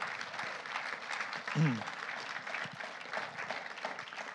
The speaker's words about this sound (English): So can you give yourselves a massive round of applause?